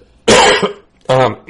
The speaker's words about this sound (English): I didn't even mute myself. You coughed right in our ear.